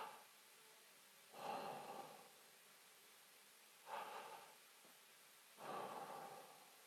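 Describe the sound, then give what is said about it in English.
A person breathes slowly and audibly, three unhurried breaths with quiet pauses between them and no talking. “So think about breathing for a second. You breathe in.”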